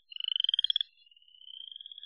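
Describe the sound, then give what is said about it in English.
A frog calls in a rapid pulsing trill, a fast series of bright chirping notes that pauses briefly and then resumes, softer and higher, carrying on steadily with no voices present. “And so actually the music of the piece is only the sound of birdsong and of frog calls.”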